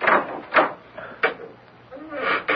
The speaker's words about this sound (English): The key doesn't always fit the lock. You may open the door.